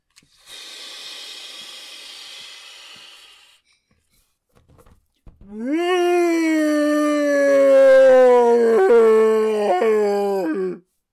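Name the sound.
monster roar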